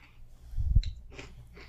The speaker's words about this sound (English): Sorry, I'm chewing.